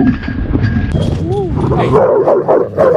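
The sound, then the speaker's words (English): A dog barks at a fence in a busy, noisy outdoor scene, with one short, rising-and-falling yelp standing out midway; muffled voices and general commotion carry on throughout. “What does your dog do? Goes back to the fucking fence and starts trying to start some shit again.”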